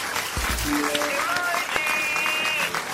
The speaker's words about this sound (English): iPhone users, round of applause, mate.